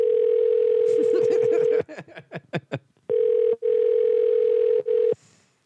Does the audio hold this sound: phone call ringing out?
yes